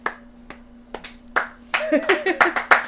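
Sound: hands clapping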